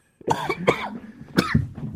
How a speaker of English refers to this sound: Excuse me. I apologize for all the coughing. And I know with this, it's harder to edit it out.